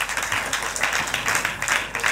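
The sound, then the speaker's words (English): An audience claps their hands together in a dense, sustained burst of applause, many overlapping claps forming a steady crackling roar with slight rhythmic surges. “Clap your hands for God.”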